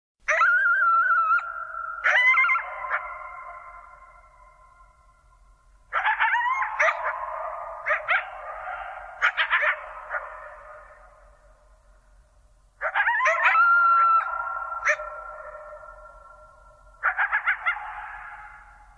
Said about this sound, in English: because there's not one coyote, but there are two. And they're singing to each other after a long season of prosperity. And to me, it sounds like a celebration.